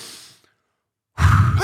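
A deep, breathy exhale fades into a second of silence, then a loud intake of air rushes in, with a hint of voice at the very end, as a person catches their breath after reading a long news story aloud.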